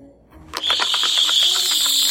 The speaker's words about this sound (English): oh, you'll love this, screech beetle from Amityville.